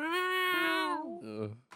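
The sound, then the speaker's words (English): A person imitates a cat's meow, a drawn-out, fairly loud vocal wail that slides downward in pitch and ends in a lower, throaty tail, followed by a brief short sound. “Meow. Cat bull.”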